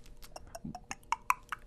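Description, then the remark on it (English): Coconut milk from a can being poured into a glass, heard as a quick run of soft clinks and bright glugging pops over about a second and a half, fairly quiet with no talking. “Sorry, I'll pour you one right now.”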